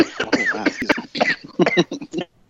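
A person coughs repeatedly in quick, uneven bursts, close up and fairly loud, each cough rough and throaty with a strained, voiced edge before trailing into quiet.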